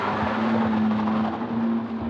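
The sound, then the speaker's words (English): An old tan-colored minivan's engine roars steadily as it is driven at high speed out of Long's property shortly after 7 p.m. on December 1st, a loud, continuous drone with a sustained low hum running through the whole stretch and no voices. “One of the tips the task force received came from a neighbor who reported seeing an old tan-colored minivan being driven at high speeds out of Long's property on December 1st, shortly after 7 p.m.”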